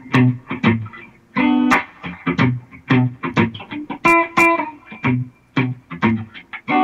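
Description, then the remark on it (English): An electric guitar with reverb plays a choppy, repeating riff of short, punchy notes in a steady rhythm, loud, with no one talking over it. “So that's the riff.”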